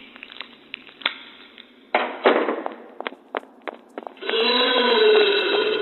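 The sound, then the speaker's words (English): Bones being chewed by Bobo, a creature with a long, snake-like snout: sharp, irregular crunching cracks and snaps, loud bursts breaking up quieter stretches, ending in a dense, continuous grinding crunch with a wavering, moaning tone of screams running through it. “As Brian's body moves its way further into Bobo's digestive system, his screams become indistinguishable from the crunching cacophony of Bobo chewing Brian's bones.”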